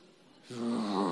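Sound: voice imitating a growl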